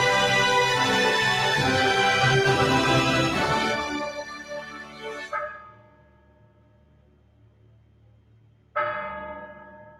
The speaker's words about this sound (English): As the clock strikes 13 on Airstrip 1, it's Tuesday, the 7th of February, year of our Lord 2023, day 1062 of 2 weeks to flatten the curve.